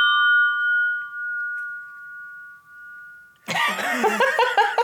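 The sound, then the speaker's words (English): Wine glasses clinked in a toast ring out in a clear, steady high tone that wavers slightly as it fades. After a few seconds it is cut off by a burst of loud laughter. “I think because I sloshed my glass a little bit.”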